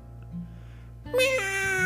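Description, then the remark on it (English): After a second of quiet low hum, a cat, Mr. Nemesis, lets out a single loud, drawn-out yowling meow that rises in pitch and holds strong until the end, its head and front legs wedged into a floor vent and its back legs kicking. “"Meow!" yowled Mr. Nemesis, his head and front legs wedged into the vent, his back legs kicking wildly, trying in vain to free himself.”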